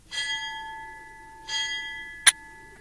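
A bell rings out twice, about a second and a half apart, each bright tone lingering and fading, followed by a short sharp click near the end.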